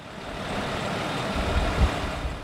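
A bus rumbles in, its heavy engine giving a steady, deep drone with a few louder low thumps near the end as it pulls up; an Immigration and Customs Enforcement agent is aboard to unload suitcases. No one speaks.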